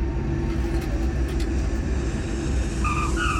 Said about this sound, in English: At 6 a.m., the plane touches down, skidding to a halt on the hot runway. It taxis to its final stopping point, and a flurry of workers step out from the shadows of the cargo terminal, ready to unload.